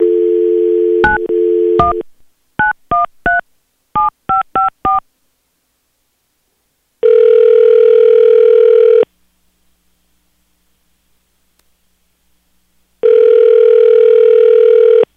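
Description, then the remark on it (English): A phone line hums with a dial tone as radio station B93.7 places a live on-air call, then quick clusters of beeping touch-tone keypresses dial a number, followed by two long, steady ringback tones separated by a silent pause. “Well, you know, I guess the easy thing for us to do is just to call with you on the line and we will see what he says and maybe we can find out why he's not calling back.”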